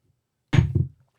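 A shot glass thunks down hard on a table after a shot is drunk, a sharp impact followed quickly by a softer second knock, then silence.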